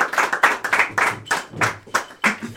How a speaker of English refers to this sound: So give him a round of applause for him. Yes.